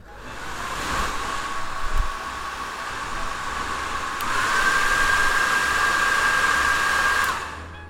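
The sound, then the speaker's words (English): A hairdryer fitted with a hood attachment dries hair after leave-in has been applied, running steadily with a muffled, hooded whoosh, its tone rising to a higher whine partway through before it cuts off near the end. No one speaks. “I actually have like this hooded thing that I put on my hairdryer, which I like to put on my hair after I've put the leave-in on, just to make sure that my hair is completely dry.”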